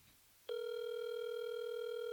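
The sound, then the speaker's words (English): A steady electronic phone ringing tone starts abruptly after a short quiet moment and holds continuously at a constant pitch, clear and fairly loud, with no voices present. “Still ringing.”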